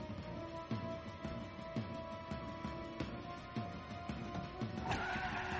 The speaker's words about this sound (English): Slam on the brakes. Oh, my God. You have got to be kidding. And there's no one in the driver's seat.